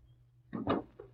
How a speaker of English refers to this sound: Close the door.